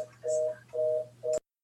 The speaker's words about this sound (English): So I put the phone in the other room, but something's making a busy signal noise. I don't even know where that came from.